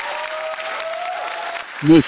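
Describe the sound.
An audience applauds in a steady, dense wash of clapping that holds at an even level, with a sustained cheer-like tone riding over it, before a voice cuts in at the very end.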